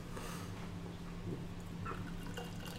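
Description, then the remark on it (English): Beer pours steadily into a glass, a continuous hissing, splashing stream with faint bubbly drips over a low background hum, no talking. “Got that nice spray coming out.”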